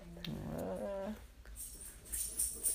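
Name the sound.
dog whimpering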